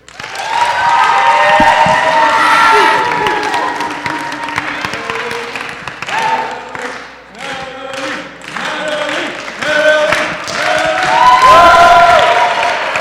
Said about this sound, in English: You know, I like how we did away with the slow clap, but it just always comes back. It always does. Because it's my favorite.